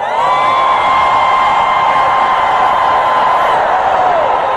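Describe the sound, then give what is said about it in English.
A loud crowd, told to lift their hands and scream for five seconds, screams and cheers in a sustained roar, with high voices holding long whooping tones above a dense wash of shouting that stays steady for several seconds. “Lift your hands and scream for 5 seconds.”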